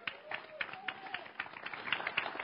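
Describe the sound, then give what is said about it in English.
An audience claps steadily throughout for a speaker being invited up to speak, a dense patter of hands at moderate volume, with faint voices murmuring beneath the applause. “You can clap for her.”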